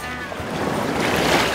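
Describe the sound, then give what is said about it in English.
Surf from an incoming tide washes in as a continuous, full rushing roar that swells slightly louder toward the end, steady with no clear pauses between waves. “The tide's coming in.”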